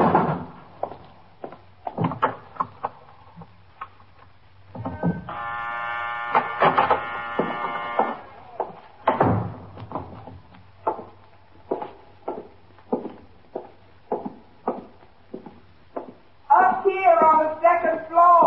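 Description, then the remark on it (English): A harsh electric door buzzer drones steadily for about three seconds as someone presses it to unlock a locked downstairs door, followed by a sharp clunk as the door unlatches and opens, with voices talking before and after. “Look, the downstairs door is locked. Can you press the buzzer?”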